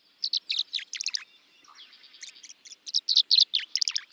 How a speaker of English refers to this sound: A flash of glittering dark blue cuts through the gray of late February as a male tree swallow glides low over a cattail marsh. The tree swallow's liquid notes hint at spring's approach.